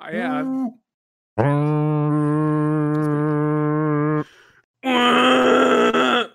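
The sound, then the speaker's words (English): A person imitates a vacuum cleaner with a loud, steady, buzzing hum held for about three seconds, framed by a short groan before it and a harsher, rougher burst after a brief pause. “which one of you can make the best vacuum noise?”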